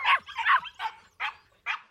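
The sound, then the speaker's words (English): Puppies yapping in a quick string of about five high-pitched barks, the first ones tumbling together before settling into short, evenly spaced yips, with no talking. “It was quite a party with all the puppies.”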